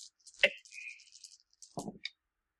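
Dice being re-rolled in a tabletop game clatter and rattle across a hard surface: a sharp initial clack, a stretch of rapid high tinkling rolls, then a couple of final knocks as they settle. No one speaks.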